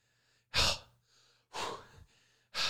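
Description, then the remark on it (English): A person imitates the heavy, stressed breathing of a shirtless man: three loud, breathy gasps at a steady rhythm, with quieter exhales in between, with no talking. “He's breathing like that.”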